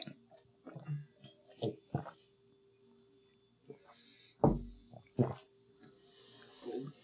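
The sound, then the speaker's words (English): Someone gulps down a glass of water in quiet, scattered swallows, with a heavier thump midway as the glass is handled, all over a faint steady hum and no talking. “So do you guys want to finish that glass and we'll get started with the next round? Sure. Bottoms up.”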